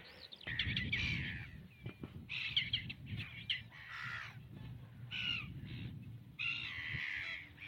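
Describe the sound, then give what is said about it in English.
Black-tailed godwits call in repeated harsh, nasal bursts as they chase one another on the coast, loud, over a steady low wind rumble with no one speaking. “Those are the calls of black-tailed godwits chasing each other.”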